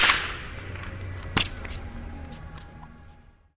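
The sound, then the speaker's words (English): A single sharp crack of a whip over a dozen feet long snaps out over a low steady background hiss, followed by a quick slapback echo off a church and a movie theater and a long, quiet tail of reverberation that slowly fades away. “You could hear a sort of short slapback echo off the church and the movie theater, and a long, quiet tail of reverberation.”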